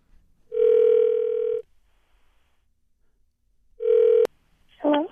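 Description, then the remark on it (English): A steady telephone dial tone plays for about a second, pauses, returns briefly and cuts off with a click, followed by a short burst of dialing tones as a phone number is dialed to call someone. No one speaks. “Okay, let's dial her up.”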